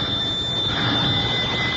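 An old-fashioned doorbell rings without a break, a steady, shrill metallic ringing that holds the same loudness for about two seconds, with no voices.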